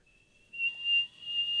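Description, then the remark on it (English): A person whistles a single very high, thin, steady note with their mouth, fairly loud for over a second with a slight breathy hiss, no talking. “But I can whistle really, really, high.”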